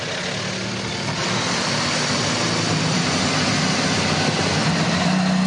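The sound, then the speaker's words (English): Seven IndyCar race car engines start up and run together in a loud, steady rumble with a low droning hum, continuous, with no voices over them, at WeatherTech Raceway Laguna Seca outside Monterey, California, before the Firestone Grand Prix of Monterey. “Seven engines come to life outside of Monterey, California at WeatherTech Raceway Laguna Seca.”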